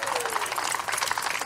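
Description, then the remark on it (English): Steady applause from a church audience during an Easter sermon: a dense, continuous patter of many hands clapping at once, fairly loud and even throughout, with no one speaking over it. “You are welcome to clap.”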